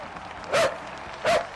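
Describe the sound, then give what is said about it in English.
A dog barks twice, two sharp, loud barks spaced less than a second apart, over a quiet background with no talking, as it is told to sit. “Good dog.”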